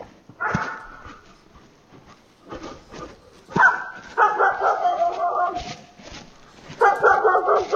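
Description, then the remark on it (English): Pepper, an old female dog, whimpers and whines in drawn-out, high, wavering cries, broken by a couple of sharp barks, fairly loud, with quieter pauses between the bursts. “And Pepper has a problem with dogs, but not generally humans.”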